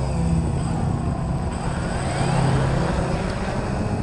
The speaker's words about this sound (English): Uh-oh. Time for some vacuuming.